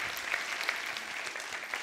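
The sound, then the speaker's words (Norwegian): A crowd at a Christmas-time Christian gathering claps steadily for those who prayed to accept Jesus for the first time. The sound is a dense wash of many overlapping hand claps at an even loudness with no voices, sustained throughout. “Skal vi gi en applaus om det var noen som bar den for aller første gang?”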